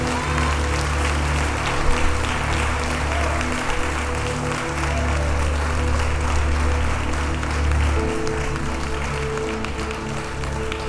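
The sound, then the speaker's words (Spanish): A church audience applauds the Lord steadily for about eleven seconds, a dense continuous wash of clapping with a low sustained hum beneath it and no clear voices rising above. “Denle un aplauso al Señor, porque Dios está pasado.”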